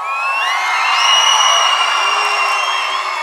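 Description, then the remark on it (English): A crowd cheers loudly, full of high-pitched squeals and shrieks that overlap into one sustained, continuous roar for the whole few seconds, with no talking over it. “Because like if you cheer really loud, like you might hear yourself.”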